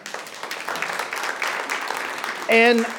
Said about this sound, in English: And it is worth it to clap for God there, because there is nothing more valuable than that.